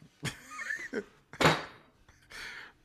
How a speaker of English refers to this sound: Oh, shit. Knock my camera over.